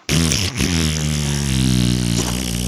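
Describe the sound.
A long, loud, buzzy fart noise with a low raspy pitch that sputters briefly near the start, then holds steady for a couple of seconds with no talking.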